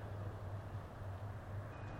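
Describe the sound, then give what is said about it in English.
A steady, low rumble of distant traffic at night hums without a break, quiet and continuous, with a faint pulsing drone underneath, a little wind moving over the microphone, and no voices. “I think I can hear some traffic in the distance, a little bit of wind moving over the microphone, perhaps.”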